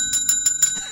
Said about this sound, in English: Uh-oh, we've got a bell.